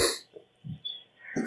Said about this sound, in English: Did you have the hiccups?